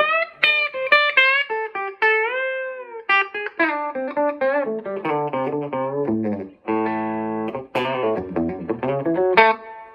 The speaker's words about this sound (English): what I look for in a Les Paul is clarity and also that chirp. I want to hear that chirp. And so, and the bridge pickup has a nice, clarity.